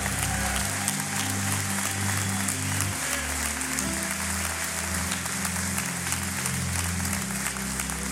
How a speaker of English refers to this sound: Come on, if you believe it today, give him a good hand clap in this church.